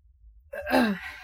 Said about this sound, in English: Excuse me for yawning.